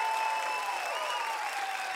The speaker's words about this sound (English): Now let's clap for the class of 2020.